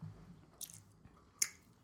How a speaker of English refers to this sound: You can't hear me chewing on this, can you? You're fine. Okay, I'm not chewing too loud.